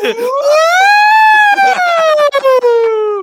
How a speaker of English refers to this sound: So I love your sirens so much.